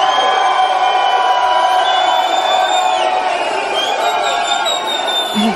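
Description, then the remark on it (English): A loud, cheering crowd roars steadily while several shrill whistles cut through, long sustained high-pitched tones that rise and bend over the continuous din of voices. “I wish I could whistle like that.”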